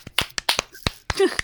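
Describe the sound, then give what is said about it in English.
Sharp, crisp hand claps by percussionist Ciro Batiste, part of nine minutes of nonstop clapping in a live performance, strike in a quick, uneven rhythm, about nine slaps in a second and a half, with a brief faint tonal sound slipping in between. “Like, his hand must have been so fucking calloused by the end of 9 minutes of nonstop clapping.”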